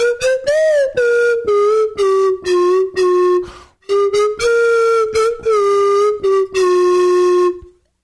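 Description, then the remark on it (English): A slide whistle plays a short tune, its bright, pure tone gliding and stepping between notes in a series of distinct phrases, loud with no one talking. “I recognize that song anywhere. Yeah, exactly. Even on the slide whistle.”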